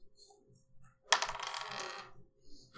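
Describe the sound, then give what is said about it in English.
A die drops onto a table with a sharp click, hits a sheet of paper and clatters briefly before settling, with no talking. “You need to aim away from your paper because I keep seeing it hitting the paper and like stop rolling.”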